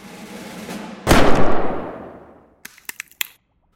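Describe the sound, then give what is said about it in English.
Isla fires a gun: a single loud gunshot cracks out of a low rumble and rings off in a long, fading tail, followed by a few quick, sharp clicks and ticks. “Isla takes a breath, closes her eyes, learns to believe in herself, and fires the gun.”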